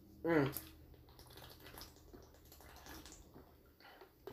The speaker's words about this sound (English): I'm going to take another sip of my water.